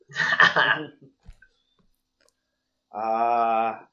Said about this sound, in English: I kind of cough and then, like, I hold out my hand and kind of gesture, like, you know, do, like, the money rub.